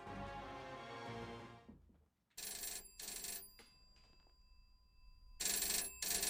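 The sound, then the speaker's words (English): A telephone in an apartment rings in loud, bright bursts, two close together and then two more after a pause, following a fading stretch of music with no voices. “Phone's ringing again.”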